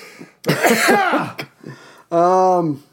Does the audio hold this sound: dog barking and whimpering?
no